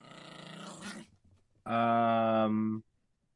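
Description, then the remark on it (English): A voice imitates a small yappy dog growling as if about to start barking: a raspy rumble for about a second, a short pause, then a louder, sustained, tonal growl that cuts off abruptly. Fairly loud. “there is a small yappy dog standing about 15 feet away from you, growling like it's about to start barking.”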